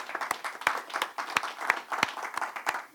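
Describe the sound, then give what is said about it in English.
A crowd applauds a couple married 57 years with steady, overlapping clapping, a few sharper individual claps standing out at irregular intervals over a dense wash of hands, moderately loud throughout. “First hand of applause, right?”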